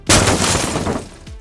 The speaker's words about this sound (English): There's a large rectangular mirror wrapped in plastic that heads to the floor right behind you.